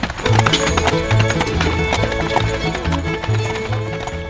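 Hooves of a hired horse pulling a buggy as it is driven clip-clop in a steady trotting rhythm, fairly loud, with sustained musical tones running underneath throughout.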